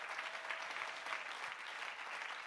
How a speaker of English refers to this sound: Come on, clap your hands unto the Lord and give him praise.